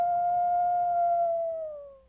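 animal, wolf howling

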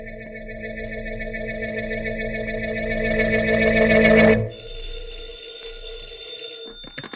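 household object, telephone bell ringing

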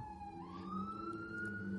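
vehicle, emergency vehicle siren passing

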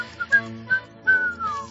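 human body sound, whistling

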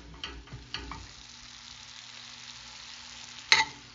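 food or drink, chicken frying

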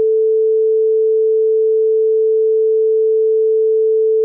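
sound effect, censor beep

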